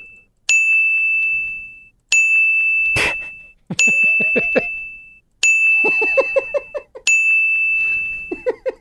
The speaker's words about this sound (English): Give me six bells. Six bells. Ding.